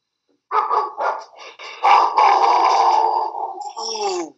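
A dog barks in a few quick bursts, then lets out a longer, sustained rough bark that trails into a higher whine-like yelp at the end.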